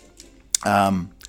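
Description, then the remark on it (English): A few sharp typewriter key clacks, spaced out, with a short voiced vocal sound in the middle between the strikes. “Not a mental note, just get your typewriter out. Type this out, please.”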